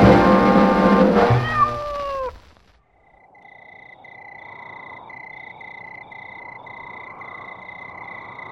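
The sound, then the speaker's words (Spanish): A kitten lets out a loud meow lasting about two seconds, then goes quiet as a steady nighttime chorus of trilling frogs or insects fills the background. “El gatito les ofrece un cordial saludo y les invita a girar a 78 revoluciones por minuto”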